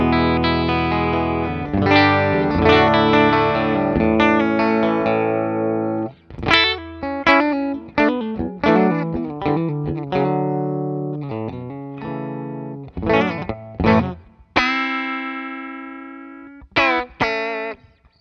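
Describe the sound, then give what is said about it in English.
An electric guitar plays through a Deluxe Reverb amp on the normal channel with a clean tone: ringing chords at first, then choppy picked notes and short chord stabs with brief pauses, fairly loud, no voices. “So with that said, my clean tone is this.”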